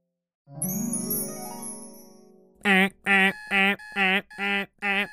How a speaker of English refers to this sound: It was 4:30 a.m. and Alabaster Zero's alarm clock was going off at the start of a brand new day.